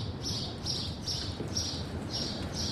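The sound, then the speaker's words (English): Birds chirp around some five or six nests in a steady series of about six high, bright calls spaced evenly apart, heard over a low rumbling background noise with no talking. “Here's the birds having a great time here, aren't they? Must be five or six nests in there.”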